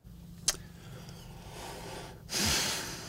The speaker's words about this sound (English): You're all breathing. One of you's got to speak.